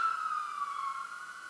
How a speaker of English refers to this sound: The sirens in the back.